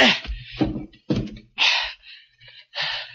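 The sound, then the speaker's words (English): Heavy furniture is dragged and shoved against a door to block it: a busy run of scraping, thumping and knocking bursts with short pauses between, and no talking. “So I piled furniture against the door.”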